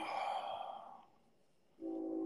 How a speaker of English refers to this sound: The train, I hear the train is back.